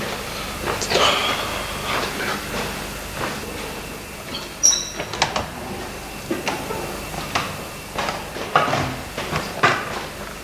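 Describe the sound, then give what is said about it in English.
Clinking footsteps in a corridor: a steady, slightly irregular series of sharp metallic taps and clicks, with one brighter ringing clink midway, heard alone at moderate loudness over a faint low hum. “I heard it, it was like clinking footsteps.”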